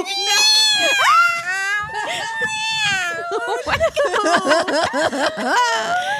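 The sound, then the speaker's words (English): A cat meows loudly and insistently, starting with long, drawn-out wails and breaking into a rapid run of shorter, wavering yowls, with no pause between calls. “Finally, she lets go, looks up, and says, meow.”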